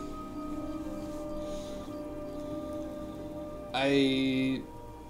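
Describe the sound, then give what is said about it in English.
Steady rain patters on a surface throughout, a soft continuous hiss under a faint sustained hum, with a brief louder tonal burst near the end before the rain carries on alone. “Maybe you should stay out of the rain and maybe flip the card upside down and then you can sit underneath it.”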